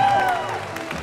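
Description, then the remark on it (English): A crowd claps in praise of God in a dense, continuous wash of applause, with a few high, sliding whoops and cheers rising above it early on before the clapping carries on alone. “If you believe that, give God a clap of praise.”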